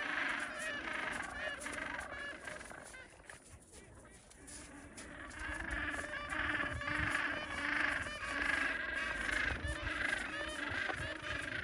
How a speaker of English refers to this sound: I'll send you a video so you can add some penguin audio into the podcast of them kind of squawking at each other.